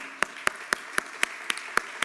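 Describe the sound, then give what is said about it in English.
Steady hand clapping for the people who cooked, set up, served and cleaned up, about eight sharp claps spaced evenly a quarter second apart, crisp and moderately loud over a faint background hiss, with no voices. “Let me give all of you a hand.”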